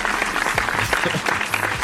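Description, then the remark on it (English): Steady audience applause, dense overlapping claps forming a bright, continuous patter at an even loudness throughout, with no voices over it. “Clap it up for episode 60.”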